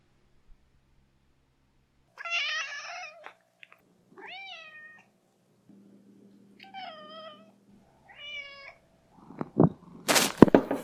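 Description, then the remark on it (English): A cat named Watson meows four times in a row, fairly loud, each call a drawn-out, rising-and-falling yowl separated by short pauses, followed by a brief burst of rustling or handling noise. “This question is for Watson the Cat.”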